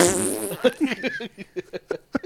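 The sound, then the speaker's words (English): A loud fart noise: a long raspy blast that breaks into a quick series of short sputtering pops and trails off, with no talking over it. “Dang it, I wanted fart noises.”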